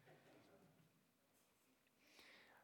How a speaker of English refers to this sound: So turn with me to John chapter 7. John chapter 7. Ooh, I hear your Bible's pages turning. It's music to my ears.